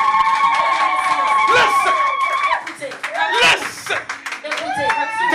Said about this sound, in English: Clap your hands and give God praise in the house.